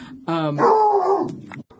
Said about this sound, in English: See what I'm talking about? The barking. The barking.